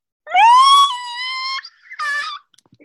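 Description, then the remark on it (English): Someone voices a loud, shrill imitation scream. It rises sharply, holds, then drops off before a shorter second shriek. No talking. “So, day 9, the first of the 5 men started screaming. Insert scream here.”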